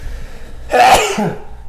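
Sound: sneeze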